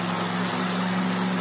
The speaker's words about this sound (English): So it's like an old looking, like a Nova, and they got it on a dyno, and they're revving the fuck out of this thing.